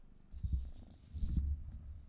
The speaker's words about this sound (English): She wants to get on my lap. Come on. Come on. She's so little. And she's purring like crazy. Here. You want to put that purr up to the mic?